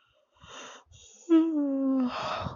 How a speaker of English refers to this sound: Sorry, this is the second yawn. I'm feeling really sleepy.